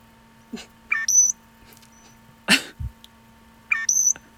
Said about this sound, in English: Is that the shrike? Yes. I have actually never listened to their call really before, I don't think. Honestly, I thought your computer was malfunctioning at first. It's great. Michelangelo, my parrot, would love that noise.